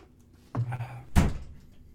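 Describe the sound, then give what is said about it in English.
A person shuts their door with a solid thump, a brief creak-like rumble followed by a sharp latch and thud, then quiet. “I'm going to shut my door.”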